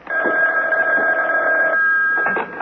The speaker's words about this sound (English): aren't you going to answer the phone?